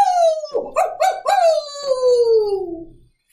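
A single long wolf howl that slides slowly downward in pitch, broken near the start by a few quick yelping bursts, loud, then fading out after about three seconds.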